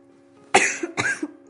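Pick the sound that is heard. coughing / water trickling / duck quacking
coughing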